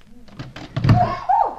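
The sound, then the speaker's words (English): A few light latch clicks lead into a solid thunk as a door is pushed open, followed by a drawn-out, wavering creak of the hinges, moderately loud. “Try this door first.”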